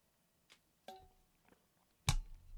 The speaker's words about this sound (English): Whew. I need a sip of water now.